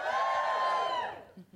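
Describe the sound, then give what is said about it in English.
An audience lets out a loud, sustained cheer of high whooping voices for about a second, answering the host's call to cheer if they already read Standard Issue, before it quickly dies away, leaving a few faint murmurs. “So, give me a cheer if you already read Standard Issue.”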